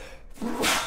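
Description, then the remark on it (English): A quick, sharp inhale followed by a single breathy sneeze that bursts out loudly at the end; nobody speaks. “Bless you.”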